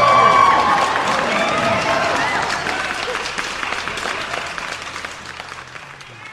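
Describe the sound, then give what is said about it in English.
An applause sound effect: a burst of crowd applause with cheering and whoops, loudest at the start and tapering gradually over about six seconds into dense, steady clapping. “All them crazy cats are going wild for you.”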